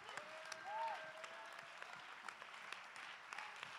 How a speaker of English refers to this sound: Clap your hands. Give God the praise.